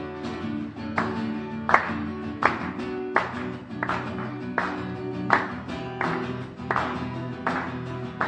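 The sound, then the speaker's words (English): A crowd at a Christian worship gathering claps together in a steady, even rhythm, roughly one sharp clap every three-quarters of a second, over a sustained low musical drone with no one speaking. “So I'm going to ask you guys if you can help me just to clap. So just on beat, amen?”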